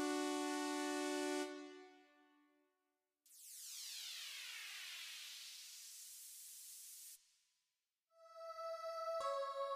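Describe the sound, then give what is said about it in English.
A synthesized car-horn sound effect played on an MC505: a bright, buzzy held tone that fades out, then a long hissing, sweeping whoosh, then another blaring horn-like tone punctuated by a sharp hit. No one talks. “So you have a lot of sounds to choose from on the MC505, like I said, from drums to synthesizers to vocoders to random sound effects such as car horns and vocal woos.”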